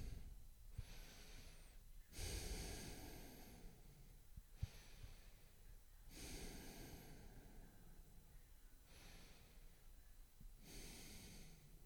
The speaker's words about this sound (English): So you got to breathe through your nose, in and out.